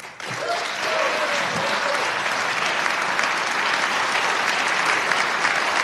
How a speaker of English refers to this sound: So, big ovation. You can hear the applause. Standing ovation, in fact, in about half of the chamber.